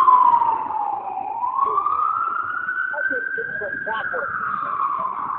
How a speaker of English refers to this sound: Oh, there's our... There's our ambulance.